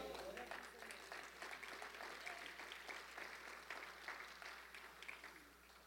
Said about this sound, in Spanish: Aplaudan otra vez, no se oyó muy convincente ese aplauso ahí,